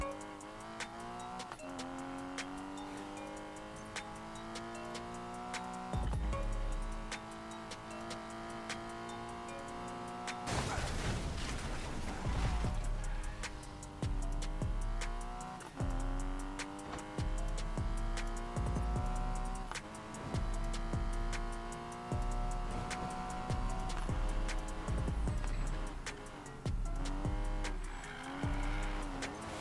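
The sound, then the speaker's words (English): A car engine revs up and down continuously, its pitch rising and falling, broken midway by a sudden harsh, noisy burst before the uneven revving resumes, as the car breaks down. No one speaks. “Cars now busted down.”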